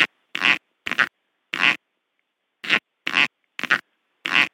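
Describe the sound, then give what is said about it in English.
A snake farting, expelling air from its cloaca with enough force to lift its tail: about eight short, squeaky, high-pitched bursts of air, each a brief hissing pop separated by silent gaps in a loose, uneven rhythm, with no voices. “It produces a very high-pitched, kind of squeaky sound.”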